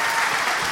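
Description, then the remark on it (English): An audience claps in a dense, steady wash of applause, many hands blending into a continuous crackle with no voices over it. “Why are you clapping?”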